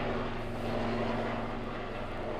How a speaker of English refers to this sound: That was like a chop. Was that a metal? That was probably a medical chopper rather than. Or is it landing chopper. In our backyard? My God. Loud chopper noise.